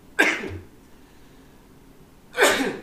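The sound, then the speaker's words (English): Two sharp, breathy sneeze bursts, each a quick explosive rush of air, separated by about two seconds of near silence. No one talks. “Oh, I'm going to sneeze.”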